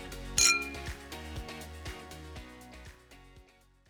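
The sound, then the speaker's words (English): A single bright, crisp clink of wine glasses touching in a toast, its ringing tone fading over a few seconds above a soft, steady rhythmic backing. “Now that's worth raising a glass to, so grab your favorite vino and join us.”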